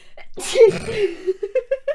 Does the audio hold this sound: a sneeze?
yes